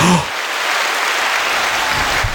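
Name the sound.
applause sound effect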